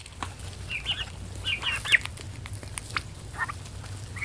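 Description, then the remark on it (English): Young turkey poults, all toms and not yet old enough for pasture, peep in a barn, scattered high chirps overlapping in quick bursts, with a steady low rumble of background noise underneath and no talking. “we passed by a barn with turkey chicks who weren't quite old enough for pasture.”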